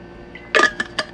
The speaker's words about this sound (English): Give me a moment. I'm drinking my water real quick because I just have popcorn right now.